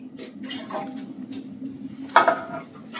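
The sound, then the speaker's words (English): A short splash of pasta water poured into a pan, with light clinks of cookware over a steady low hum. “I start with just a little pasta water.”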